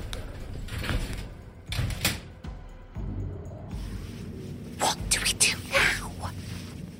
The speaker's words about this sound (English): We hadn't taken more than 5 paces before the door to the elevator slid shut and descended, leaving us in total darkness.